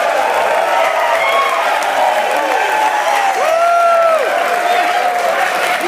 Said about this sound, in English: We got a live crowd here, Tanner. How about that? That's a pretty good crowd. I think they're cheering for you